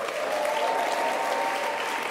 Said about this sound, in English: And I think before we start, we should just congratulate and give a cheer for the people of Melbourne. More than 100,000 people turned out today.